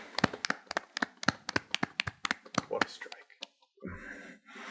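A quick run of sharp hand claps, about a dozen crisp, bright smacks in an uneven rhythm, followed by a brief breathy vocal sound at the end.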